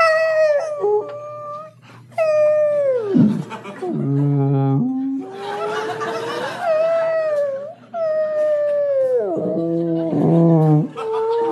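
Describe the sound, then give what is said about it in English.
A voice imitates whale calls with long, wavering moans that swoop downward, repeated in several loud phrases with low grunting dips between them. “and he deciphers the whale noises as he hears them. You know, he'll hear like...”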